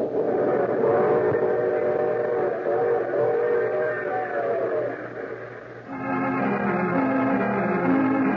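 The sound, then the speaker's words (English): A train whistle wails in long, harmonic blasts over the steady rumble of a rolling train, shifting to a different pitch partway through. Loud, with no talking. “I take this same train every week at this same time.”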